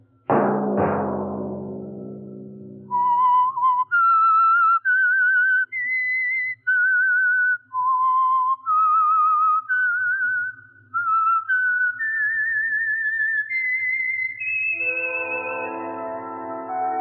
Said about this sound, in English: Let that whistle be your signal each Sunday for the Signal Oil program, The Whistler.